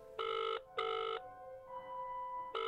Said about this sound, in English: Come on, come on, come on, pick up. Shit. Matt, just answer your phone.